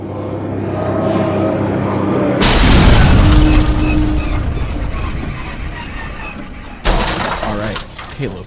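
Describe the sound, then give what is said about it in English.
A steady mechanical engine drone is broken by a sudden, loud crashing impact and explosion as the spaceship Tin Sparrow, fleeing Nar Shaddaa, collides with another ship and is ripped apart, followed by roaring, crackling debris and a second sharp blast near the end. “The crew of the Tin Sparrow try to flee Nar Shaddaa, but suffer a violent collision with another ship. The Tin Sparrow is ripped apart in the explosion, and Kail D-Bag wakes up by himself in the wreckage.”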